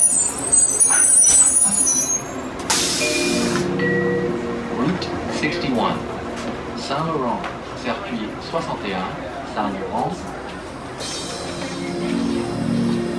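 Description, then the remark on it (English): Inside a moving city bus on route 61, Saint Laurent, at midnight: a steady low engine rumble with bursts of hissing air brakes near the start and end, and indistinct voices murmuring in the background. “when you're in a state of mind of peace or just kind of wanting to say, yes, I'm out here at midnight, but I ain't trying to deal with the back of the bus bullshit where all the various, you know, debauchery takes place.”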